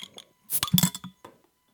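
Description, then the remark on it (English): Glass bottles of Joker's Wild Wit wheat beer clink together in a quick cluster of bright, ringing knocks, followed by a softer clink after a short pause. No one speaks. “I had a bottle. Oh, this one smells good.”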